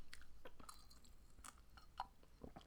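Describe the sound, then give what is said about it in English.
Sips of Canada Dry pomegranate cherry seltzer, served without ice, with crisp, crackling bubbles and a few soft slurps scattered over a couple of seconds, quiet, with no one talking. “And I also don't have ice today just because I was already freezing, but here's the seltzer. It's, hold on, Canada Dry, pomegranate, cherry. It is so good. Everybody take a sip.”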